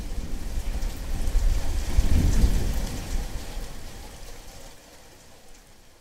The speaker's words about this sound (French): Nous dormons quelques heures sur la moquette, bercés par le tonnerre et les vents qui font trembler la maison.